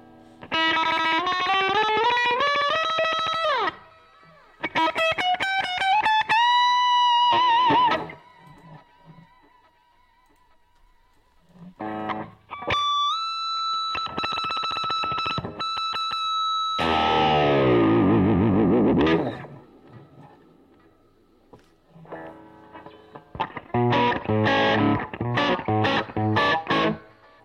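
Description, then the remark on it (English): An electric guitar, slightly out of tune, plays bursts of distorted, effect-laden notes and chords, with long washy reverb tails ringing out between phrases. There is no talking, and the playing is fairly loud. “Listen to all that reverb.”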